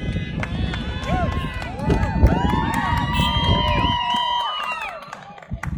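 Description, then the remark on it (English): A loud, dense crowd at an outdoor pro-life rally in the cold roars throughout, with overlapping shouts and whoops and long sustained honking tones rising above the din, easing slightly near the end. “And if you're shouting and honking now, then you know the next sentence.”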